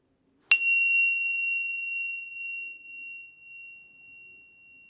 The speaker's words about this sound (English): And then opening your eyes to the sound of the bell.